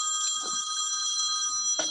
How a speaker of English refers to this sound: Is that your phone? Is that a house phone? No, that's her ringtone.